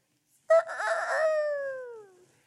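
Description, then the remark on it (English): A single rooster crow, loud and harmonic-rich, starting abruptly with a rough burst then sliding into a long, gradually falling tone that fades out after about two seconds. No talking. “Say, I want to apologize right now for that rooster crow.”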